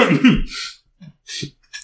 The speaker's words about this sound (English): Sorry, I sneezed.